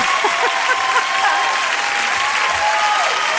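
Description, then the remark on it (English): Steady, dense audience applause after a song ends fills the whole stretch, a broad wash of many hands clapping at a constant loud level, with a few voices faintly mixed in. “Enough clapping.”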